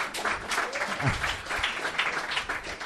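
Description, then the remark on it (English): An audience of a show claps steadily for a few seconds in answer to being asked who listens to the show, a dense, moderately loud patter of many hands with no clear break, and a brief vocal whoop rises faintly partway through. “Who actually listens to the show? By a round of applause, please.”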